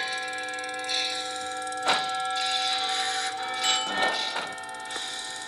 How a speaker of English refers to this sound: So try the zigzaggy one, which is the bus doors opening and closing.